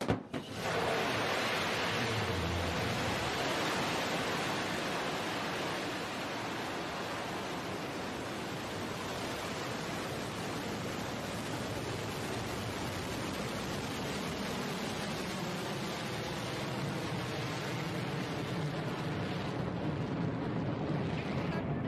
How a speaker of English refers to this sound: I want y'all to watch the way that it launched. In my whole lifetime, I've never seen a vehicle or a ship launch from the earth into space with this camera angle. I thought it was kind of cool. 7, 6, 5, 4, command engine start. 2, 1.